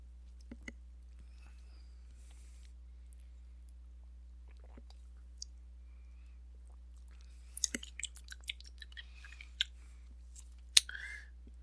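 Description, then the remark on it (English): Someone quietly sips a watermelon lemonade malt beverage, with faint lip smacks, small wet clicks and a swallow over a steady low hum. No one speaks. “So let's take a sip and see how it is.”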